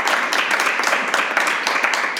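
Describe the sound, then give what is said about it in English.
Steady hand clapping from a group for Beto O'Rourke, dense and continuous with many overlapping claps at an even loudness for a couple of seconds, with no voices. “Beto O'Rourke, please clap.”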